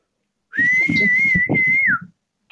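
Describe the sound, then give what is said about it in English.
One long, steady high whistle holds a single pitch for about a second and a half, loud, over a rough, pulsing low rumble, then slides down slightly and stops. “What the hell would that sound like? A whistle and a roaring crowd, maybe?”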